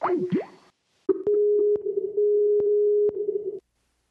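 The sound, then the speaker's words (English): A phone line tone after a hang-up, made before redialing: a brief warbling blip, then a steady, mid-pitched drone lasting a few seconds, broken by several sharp clicks. No one speaks. “Okay, I'm going to hang up and then recall, and then I'll just edit this part out.”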